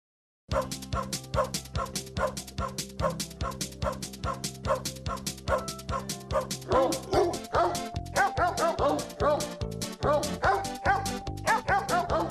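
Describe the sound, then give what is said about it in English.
A steady, rapid run of barks and yips from Harris, the shop dog, sounds loud over a rhythmic musical backing, with higher whining, whimper-like notes woven in toward the end. No one speaks. “It's in honor of Jeff and the shop dog, Harris.”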